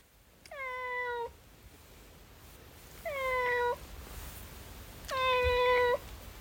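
A male pet cat meows three times, each call a drawn-out, harmonic mew lasting under a second, spaced a couple of seconds apart with quiet between them and no talking.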